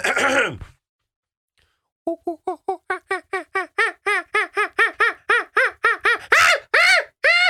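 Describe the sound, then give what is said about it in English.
A person imitates a monkey with a brief breathy sound, a pause, then a quickening run of rising hoo-hoo hoots that grow louder and end in a couple of shrill screeches. “Do you guys want to hear my monkey impression?”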